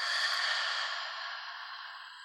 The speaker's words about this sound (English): So take a deep breath in through your nose. And exhale out your mouth. And inhale. Exhale. Inhale. Exhale.